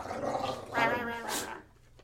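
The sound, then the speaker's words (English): Dogs scuffle in a fight, with snarling growls and a few sharp, excited barks overlapping in a brief burst before things quiet down. “Okay, we have a fight. Hey, calm down.”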